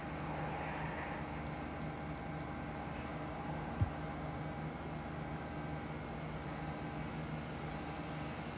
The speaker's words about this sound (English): Because the air conditioner's too loud. I had to crank it up.